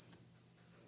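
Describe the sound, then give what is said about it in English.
A cricket chirps steadily in a high, thin, continuous trill, fairly quiet and alone, with no voices. “Say, what's that chirping noise? Chirp, chirp, chirp, chirp. Why, it's the sound of a cricket.”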